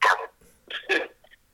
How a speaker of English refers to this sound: I'm going to kill your dog if you don't pull away from that mic.